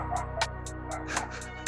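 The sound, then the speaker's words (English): A dog barks in a quick, steady string of about eight sharp yaps, somewhat muffled and in the background, over a constant low electrical hum. “oh bro, my bad with the dogs. Apologize to the audience”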